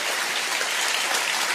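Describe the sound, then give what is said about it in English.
A church crowd claps steadily, a dense, even wash of many hands with no pauses and no talking, holding at a fairly strong level throughout. “They weren't cheering me like y'all are.”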